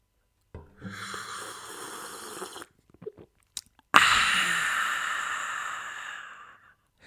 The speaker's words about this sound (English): That slurping. When you drink your coffee, it's really annoying.